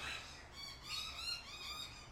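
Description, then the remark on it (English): Harsh, repeated squawking alarm calls from common myna birds in Melbourne, coming in quick overlapping bursts, with no one talking, as the birds warn of something sneaking around outside. “So that's called a minor bird. We call it a minor bird.”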